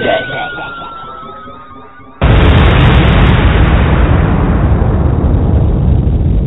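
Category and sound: sound effect, explosion sound effect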